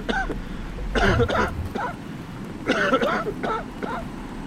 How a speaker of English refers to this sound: My oxygen mix was higher than yours, so you might cough for a few.